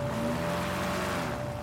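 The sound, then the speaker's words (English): A small airboat roars steadily across open marsh water, racing over clumps of sawgrass and around stands of cypress, its loud engine and propeller drone holding a constant pitch over rushing wind and spray, continuous with no voices. “We're in a small airboat racing across the marshes over clumps of jagged sawgrass and around stands of cypress.”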